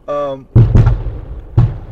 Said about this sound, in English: They haven't fired the long gun off yet. That one puts off a bang. But yeah, every hour on the hour, they started at 8 o'clock this morning.